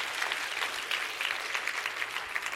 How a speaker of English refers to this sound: Come on, clap your hands. I'll have a big life, a big life.